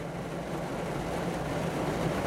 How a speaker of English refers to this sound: And now it's just raining harder and harder. And I'm sure you can hear it.